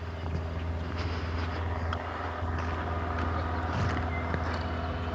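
A cherry picker's engine runs at a building site with a steady, low mechanical drone and a constant rumble. It holds level throughout, with faint clatters and rattles over it and no voices.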